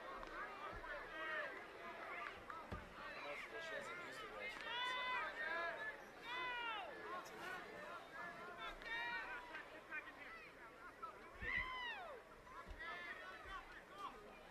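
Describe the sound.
Steady murmur of a ballpark crowd of 1,640 at a baseball home opener on a cool, crisp March evening, many overlapping voices blending into a continuous hubbub, with occasional louder shouts and calls rising above the din throughout.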